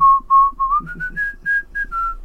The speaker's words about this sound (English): Whistle the Confederate anthem here.